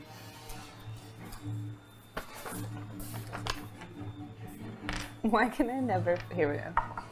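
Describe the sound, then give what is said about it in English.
A d8 die is rolled, making several light, hard clicks and clatters as it tumbles across a table, with a low steady hum underneath and a wavering voice-like tone toward the end. “Can you roll a d8 for me?”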